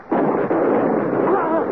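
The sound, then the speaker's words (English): A loud gunshot cracks out as Holmes fires from a boat and hits a man armed with a blowpipe, followed by another sharp report, with a continuous heavy roar filling the background and a faint voice-like tone rising near the end. “You hit him, Holmes!”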